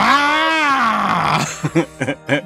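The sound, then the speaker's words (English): A person imitates a monster scream with one long, drawn-out, raspy cry that slowly falls in pitch, followed by a few short, choppy vocal bursts. “And then suddenly they all throw their heads back at the same time and they kind of do this weird, like, it's supposed to sound like a monster scream. They do their best impression.”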